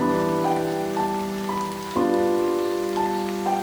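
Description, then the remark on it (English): Steady rain patters throughout, blended with sustained, droning musical tones that swell at the start and again midway. No one speaks. “That was a good, I like that little, the rain's back.”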